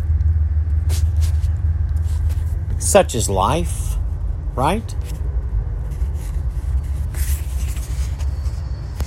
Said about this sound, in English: Here comes the beautiful train that comes by. You may or may not hear it.